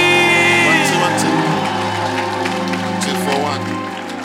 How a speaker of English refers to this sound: I want you to clap your hands with shouts of Jesus joy and welcome Bishop Richard Ayi.